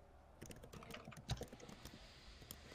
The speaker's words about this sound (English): Who are you typing to? Don't you worry about that. All the clicks. The clicks might be me, sorry.